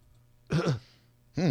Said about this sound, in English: Oh, cough into the phone if you're being held at gunpoint and you want us to alert the authorities.